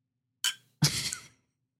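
A metal straw clinks twice against a glass jar holding watermelon Simply Spiked lemonade and ice: a short tap, then a louder knock that rings briefly with a bright, glassy tone before fading. No voices.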